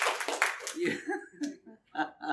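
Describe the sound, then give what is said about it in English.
A burst of loud audience applause with some laughter, clapping for a man who preached, fills the first second, then fades quickly as a voice starts talking. “Why don't you clap really loud so he can hear you online?”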